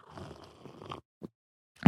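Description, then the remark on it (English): A noisy slurping sip of a cappuccino lasting about a second, then a brief pause, a soft gulp, and a louder wet swallow at the end. “Is a little swift sip of cappuccino to help things along.”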